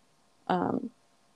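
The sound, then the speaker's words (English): A single sharp sneeze bursts out, sudden and loud, with a brief voiced tail before it cuts off into quiet. “I'm so sorry, I had to sneeze.”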